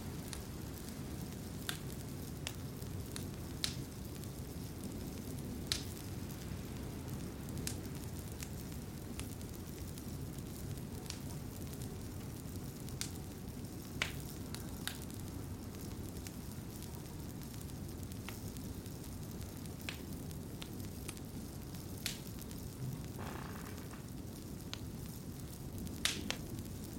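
A fire crackles steadily in a cottage fireplace in a forest, over a warm low rumble, with sharp pops and snaps scattered irregularly throughout, fairly quiet, with no one speaking.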